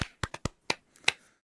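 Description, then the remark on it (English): A brief burst of hand clapping: six or seven sharp, crisp claps in a slightly uneven rhythm, the later ones softer and scattered, with no voices. “That's you clapping, right”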